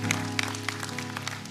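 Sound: audience clapping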